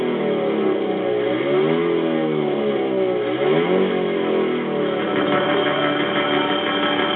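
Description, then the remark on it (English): An electric rally car, entered by an Argentinian team in the 2016 Dakar Rally, whines loudly. It is powered by eight battery packs and has a central electric engine with a six-gear gearbox. Its tone climbs and dips through several surges of acceleration over a constant rumble, with no voices. “Argentinian Ariel Jeton and crew are indeed driving a revolutionary vehicle powered by several batteries.”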